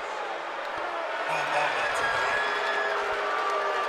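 A basketball arena crowd at a Magic game roars in a steady, dense wash of cheering and murmuring voices as Mo Bamba is sent to the free throw line for a three-point play. The noise swells slightly midway and holds loud throughout, with no single voice standing out.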